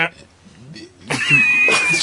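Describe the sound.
After a moment of low murmuring voices, a loud, harsh buzzer blares abruptly, signalling the lightning round of a show, holding a steady high-pitched tone for nearly a second with a rough, noisy edge.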